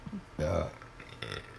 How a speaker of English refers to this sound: I'm gonna burp.